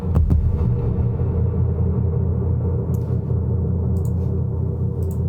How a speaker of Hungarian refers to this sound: És a lábdob meg így néz ki egyébként.